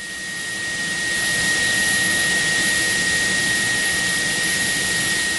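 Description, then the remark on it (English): A steady, loud roar of the engines of a Royal New Zealand Air Force P-3 Orion at Whenuapai Air Base in Auckland, just after 7 a.m., as the crew makes checks before a surveillance mission. A high whining hiss and a constant tonal whine swell slightly at the start, then hold steady. “The Royal New Zealand Air Force crew is making checks before the P3 Orion leaves on a surveillance mission known as a NORPAT.”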